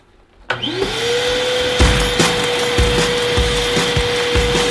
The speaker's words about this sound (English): Shell's about to vacuum our room, so I'm switching it to blow and adding baby powder. It's gonna blow baby powder everywhere.